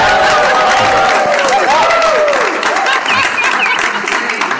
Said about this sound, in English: I'm not ashamed to ask for applause.